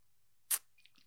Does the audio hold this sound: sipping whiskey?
yes